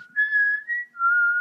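A clear whistled melody of three sustained notes: a held tone, a brief step higher, then a longer lower note, whistled alone with no voices or other sounds; the fee-fi-fo-fum whistling from a new 20-minute rock jam.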